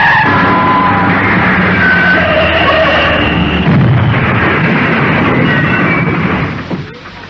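An old, worn-out car driven too fast, its steering gone, skids out of control with a long screeching, grinding roar, then crashes in a loud, dense burst of noise that trails off abruptly near the end. No voices are heard.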